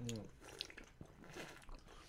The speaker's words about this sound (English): still chewing that same mouthful of jerky? Nice. You could have spit it out, bro. No, better not. Don't waste it, jerky.